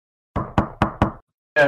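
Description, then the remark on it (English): Four firm, evenly spaced knocks on a front door, loud, followed by a short pause and the start of someone speaking. “I think, is somebody knocking? Where's that a knock to”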